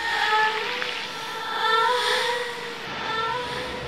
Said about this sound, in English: Yeah, give us the sound of effect of the ocean. Come on. Just go with the feeling, babies. You got it. Here's your ocean.